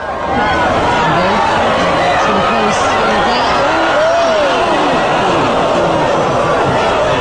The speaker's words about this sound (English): Here's a clip of the crowd reacting to her run. You can feel the moment.